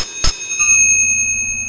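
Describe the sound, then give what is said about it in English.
A single bright ding from a motorcycle's handlebar bell, struck once with a sharp metallic onset and then a clear ringing tone that slowly fades, heard alone. “It's the bell from the handlebars of my motorcycle.”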